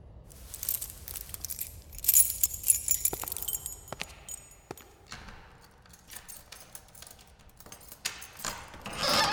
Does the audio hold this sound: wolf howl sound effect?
no